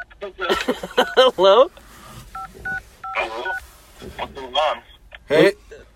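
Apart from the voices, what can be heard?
telephone keypad dialing tones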